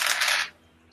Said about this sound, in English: Alright, roll dice.